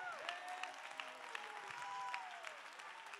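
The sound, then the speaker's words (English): A crowd claps steadily in praise of the Lord, a dense wash of many hands with a few sharper claps standing out, while faint sustained tones, like an organ, drift underneath. “Come on, somebody. Clap your hands.”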